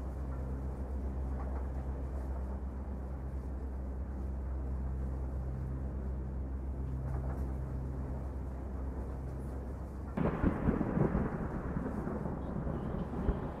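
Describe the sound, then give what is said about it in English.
A deep, steady rumble of thunder rolls on for several seconds, then a sudden loud crash bursts in near the end and keeps roaring, close and heavy, with no voices. “Wow, the storm sounds close.”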